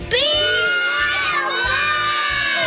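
A group of children visiting Santa shouts together in unison on the count of three, loud, a sustained high-pitched collective yell lasting a couple of seconds with a rhythmic low thumping underneath.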